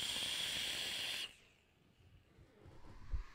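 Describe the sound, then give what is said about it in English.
A crackly AJ Holland coil in a retro vape crackles and sizzles with a steady hiss for just over a second, then cuts off abruptly, leaving near-quiet with a faint low thump at the end. “And just in case you couldn't hear the crackle. Oh. Oh. Oh. Crackle. Crackle City.”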